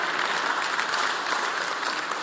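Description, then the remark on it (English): A church audience claps steadily in celebration of Easter, a dense and even wash of many hands applauding at a fairly loud level, with no voices standing out above it. “You can clap.”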